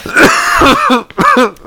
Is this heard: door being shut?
no